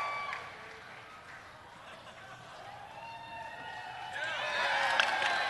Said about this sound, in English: You know it's an internet convention when people cheer a basket from 4 feet away.